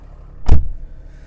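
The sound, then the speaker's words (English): A power side mirror on a truck gives one brief, loud mechanical whir-and-clunk over a quiet vehicle-cabin hum with no one talking. “Oh, I keep forgetting to do this. Do my mirror. There we go.”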